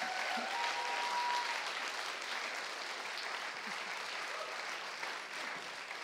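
An audience breaks into a steady round of applause, many hands clapping in a dense, even wash that holds at a fairly loud level for several seconds.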